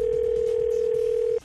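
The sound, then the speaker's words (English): A steady, unbroken telephone dial tone, as a call is placed, hums loudly and evenly for over a second, then cuts off abruptly, leaving only faint background hiss. “So I'm going to start the call from the dentist's office to let her know why she's having that problem.”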